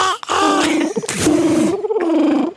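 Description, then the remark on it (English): A person tries to imitate a cricket with their voice, but it comes out as throaty, pigeon-like cooing with a raspy, breathy burst in the middle, loud. “That's like a pigeon.”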